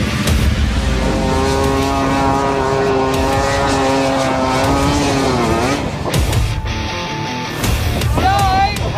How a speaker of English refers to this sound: the most glorious of motorsports, modified lawnmower racing. The lawnmowers, they can top 100 kilometres an hour, which basically means they can do a quarter acre block in about 4.5 seconds.